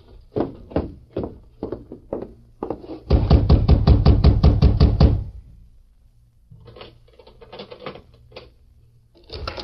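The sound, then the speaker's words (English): Knocking on the wooden door of Sheriff Clark's home after dark, rapped by the Lone Ranger: a few separate raps, then a loud, rapid flurry of about fifteen even blows, followed by softer, scattered knocks as it winds down. “It was dark when he reined up at the home of Sheriff Clark, dismounted, and rapped on the door.”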